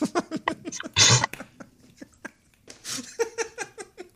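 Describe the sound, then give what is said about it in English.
A fart blasts into a telephone, a loud raspy burst lasting about a quarter second, surrounded by shorter sputtering, voice-like noises and a second hissy burst. “Someone just farted in the phone.”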